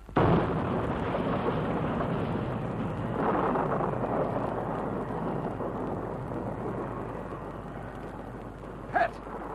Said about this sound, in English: We knew the crash was coming and you prepared for it.